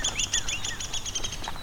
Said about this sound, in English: It's got that downy descending call. There's two of them here. One behind me, one in front of me.